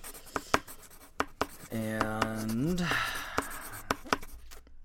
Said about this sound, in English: She looks at the sarcophagus and kind of writes the translations down on a piece of paper.